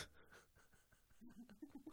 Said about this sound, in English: Take a sniff. Pull it out.